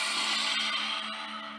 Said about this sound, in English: One more like that before we add on. Deep breath in. Exaggerated exhale.